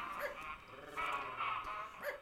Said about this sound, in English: A cocker spaniel. An evil little beast named Olivia.